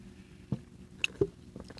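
Someone takes a quiet sip of a drink: a few soft, wet mouth clicks and a brief slurp-like swallow spaced over under two seconds, with no talking.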